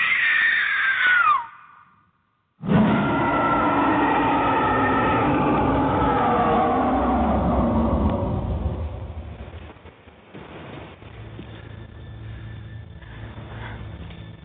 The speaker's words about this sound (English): You're feeling uneasy, …. Feeling's growing, washing over you. Scream, …! Scream for your life!